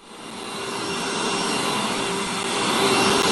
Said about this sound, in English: Alexa. Next. Vacuum.